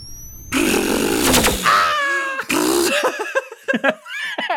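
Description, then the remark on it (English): A voice imitates a cat's purr: a loud, rough, buzzing rumble, breaking into several short warbling, meow-like vocal bursts toward the end. “And as he does that, to add an extra oomph to it, just a sheer presses close and purrs.”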